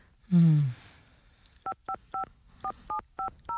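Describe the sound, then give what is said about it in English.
A short, low tone opens, then eight crisp telephone keypad tones beep one after another at a quick, slightly uneven pace as a phone number is dialed, clear against a quiet background. “I need to call”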